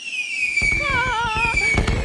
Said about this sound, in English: Put the fireworks sound back in.